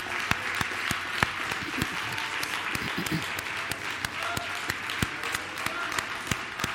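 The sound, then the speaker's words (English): A church audience claps together in sustained applause praising Jesus, many hands producing a dense, steady patter with sharper individual claps popping out, moderately loud, with faint voices underneath. “How about we give Jesus one more hand clap of praise together?”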